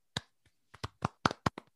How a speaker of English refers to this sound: So Pete Gogolak. Pete Gogolak, baby. A round of applause.